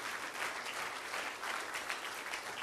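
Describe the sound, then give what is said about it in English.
An audience gives a hand of praise to the Lord: sustained applause, a dense, steady wash of many hands clapping at once with no break, bright and crackling throughout. “Let's give the mighty hand of praises to the Lord.”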